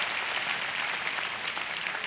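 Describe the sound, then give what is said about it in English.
Steady, dense applause from an audience clapping for men and women honoring teachers, many hands clapping continuously at an even loudness for the full two seconds, with no voices standing out. “Let's clap our hands one more time for all these men and women honoring the teachers.”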